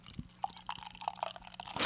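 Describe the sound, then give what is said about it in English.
Beer being poured into glasses, with fizzy, bubbly splashes and a few light clinks over a short stretch, rising in intensity toward the end. No one speaks. “It'd be really interesting to see if Mike can pour 4 equal pours.”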